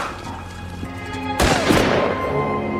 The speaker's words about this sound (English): Right, and so all of a sudden he gets shot. And I heard some sounds, like popping. It sounded like firecrackers.